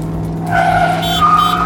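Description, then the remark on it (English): A stick-shift truck's engine roars as it accelerates hard with the gas pedal floored, with loud, sustained tire squeals rising in pitch over a steady low engine drone, intense, with no one talking. “Now just put the truck in this gear and put the pedal to the metal. But... Punch the gas!”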